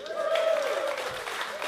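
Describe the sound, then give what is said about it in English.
An audience at a live event cheers and applauds for its dedication to the memory of Jock Elliott, a dense, steady wash of clapping with a sustained whoop or whistle riding over it in the first second, holding at an even level throughout. “Can we give that a cheer, please?”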